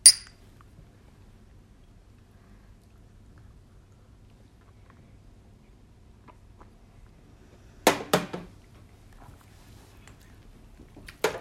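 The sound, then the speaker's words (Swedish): Glasses clink together in a toast, a couple of bright chimes near the end, with another short clink at the start and a quiet hum in between. “Utbringar en skål.”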